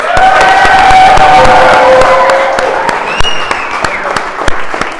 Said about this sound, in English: Second round of applause for our interns.